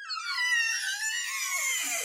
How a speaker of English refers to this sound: And this is my actual kitchen door.